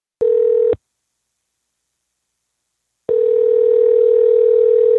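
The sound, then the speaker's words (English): A steady, buzzing telephone dial tone sounds briefly as a phone call is being placed, cuts out for a couple of seconds of silence, then returns and holds unbroken to the end. No voices. “Let's give him a buzz.”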